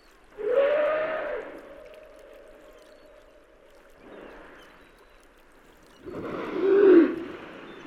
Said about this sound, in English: This is the sound of humpback whales feeding on herring along the east coast of Chichagof Island. That's in southeastern Alaska in the Tongass National Forest.